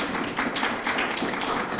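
Audience applause: a dense, steady wash of many hands clapping at once, crisp and bright, holding an even loudness for the whole short stretch with no voices heard.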